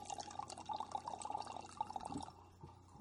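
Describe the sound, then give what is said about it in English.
Wine glugs out of a bottle in a steady, bubbly stream of gurgles that lasts a couple of seconds, then tapers off. It sounds fairly quiet, with no talking. “Yeah, it was a very, very visceral experience, him pouring the wine.”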